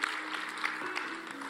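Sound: audience clapping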